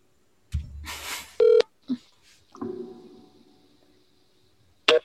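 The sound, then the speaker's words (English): A phone line sounds through a handset as a call rings and then goes busy after seven rings: a loud electronic tone burst, a short blip, a stretch of faint muffled noise, then another brief tone at the end, with no one talking. “Whose phone goes busy after seven rings?”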